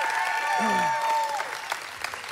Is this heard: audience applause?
yes